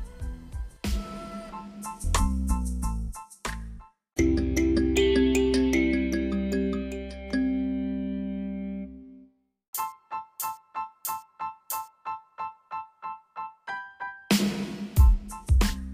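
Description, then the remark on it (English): A phone ringtone from an incoming call plays loudly during a recording, an electronic melody of sustained chiming tones followed by a quick, evenly repeating run of short beeps, with no voices. “Somebody called me on my phone, and it knocked me out of the app, recording app.”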